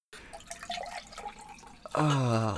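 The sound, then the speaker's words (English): Liquid pours and trickles for about two seconds, with a wet, bubbling texture, before a voice breaks in at the end with a loud, drawn-out vocal sound. “Oh, well, every time you drink the pour that, I want it to be like Hitchhiker's Guide to the Galaxy.”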